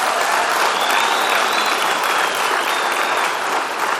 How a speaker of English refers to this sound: I think he needs a round of applause just for that.